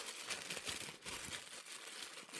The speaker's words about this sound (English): Mm, tissue paper.